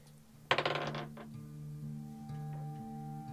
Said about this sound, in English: Uh-oh. Don't like it when he rolls those dice.